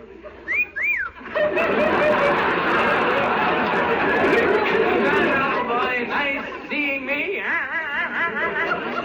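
A person gives a couple of quick whistled notes, then a lively crowd breaks into chatter and laughter, with wavering whistled tones weaving through the noise near the end.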